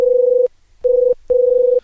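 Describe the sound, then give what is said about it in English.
An electronic telephone ring plays alone: three loud, steady, buzzy tone bursts with short gaps between them, clear. “That's the star player phone.”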